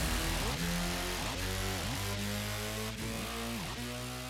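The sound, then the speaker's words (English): Several car engines start and rev loudly and continuously, their pitch climbing and dropping in repeated surges about once a second, with no talking over the throaty roar. “Ladies and gentlemen, start your engines.”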